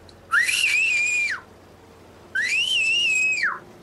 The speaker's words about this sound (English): And I start screaming and I start whistling, because I could whistle very, very loud, like very loud. If you want, I could whistle right now for you.